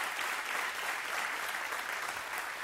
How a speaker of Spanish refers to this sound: Dale un fuerte aplauso al Señor, dale un fuerte aplauso al Señor.